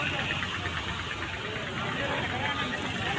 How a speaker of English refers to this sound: There's just this massive cars and motorcycles.